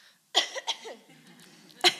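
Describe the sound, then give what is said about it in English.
A person gives a short cough made of two quick throaty bursts, then a brief pause and one more sharp cough at the end, with no talking. “So I'm just going to do a little cough.”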